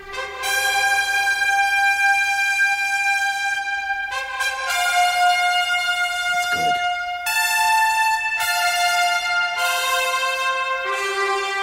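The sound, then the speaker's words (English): A television football broadcast theme, the Australian Channel 7 version: a loud, brassy fanfare of long sustained chords that shift every few seconds, played on its own with no voices. “But this is the Channel 7 version. For Aussie kids, it gives you tingles.”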